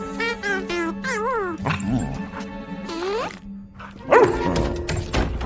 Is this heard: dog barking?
yes